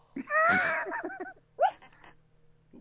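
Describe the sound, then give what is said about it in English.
A male dog wheezes and whimpers while dreaming in its sleep, a run of strained, nasal breaths and squeaky noises, with a final shorter wheezy snort after a pause. “Listen to him. He's having a dream as well.”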